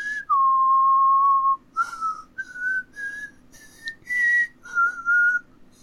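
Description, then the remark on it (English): A person whistles alone, starting with one long steady note, then breaking into a string of shorter, wavering, breathy notes that sound strained and falter toward the end. “That is literally the most pitiful whistle I've ever heard. It started out strong, and then it sounded like it was struggling.”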